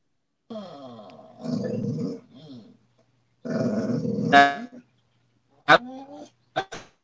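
animal, growling

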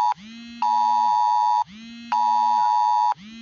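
signal or alarm, phone alert beep

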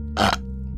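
human body sound, burp

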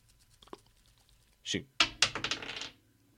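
household object, dice rolling

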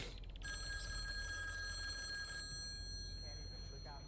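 household object, telephone ringing

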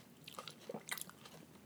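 food or drink, chewing and crunching food

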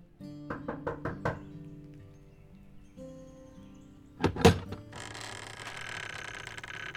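household object, knocking on a door

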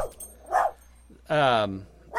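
animal, dogs barking downstairs

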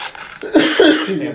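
human body sound, person coughing

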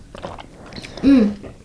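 food or drink, sipping hot ginger tea

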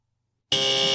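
signal or alarm, quiz buzzer

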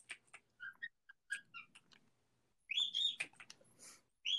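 bird, pet birds chirping

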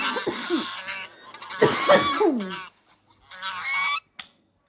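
bird, geese honking

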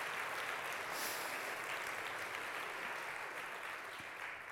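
crowd, audience applauding

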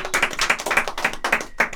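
crowd, applause

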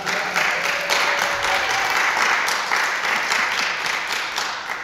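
crowd, audience applause

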